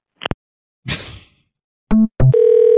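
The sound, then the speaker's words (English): A phone is hung up: a couple of sharp clicks and a clattering handset, then two short beeps and a steady, loud dial tone droning to the end. “That means hang up the phone.”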